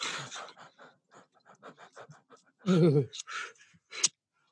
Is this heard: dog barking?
no